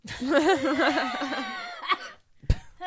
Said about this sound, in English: Wow, that's that was a deep there. Emphysema cough. There's my lung.